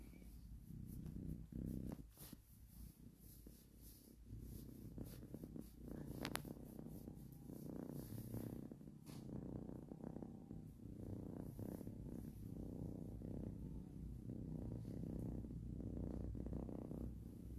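A cat that has just woken up purrs steadily and continuously while being petted, a low rumbling vibration that fills the whole recording with a soft, even rhythm and no talking over it.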